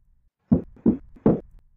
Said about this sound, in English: Someone pounded on Aiden's door. Aiden and Even stared at each other, their spoons in midair. Who would call at such a late hour?